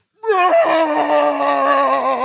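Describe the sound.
A person loudly imitates the scream Chewbacca gives in Star Wars, reenacting how wrestler Braun Strowman screams: one sustained, wavering cry that rises quickly and holds for about two seconds, with no other talking.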